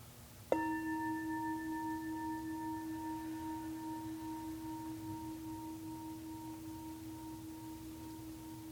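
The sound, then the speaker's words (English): A single meditation bell, rung to signal the end of a meditation, is struck once with a sharp onset, then rings with a steady, clear tone that fades very slowly over several seconds, sustaining to the end over faint low hum. “Opening your eyes when you hear the bell.”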